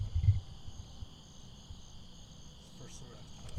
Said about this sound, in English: Crickets on that one.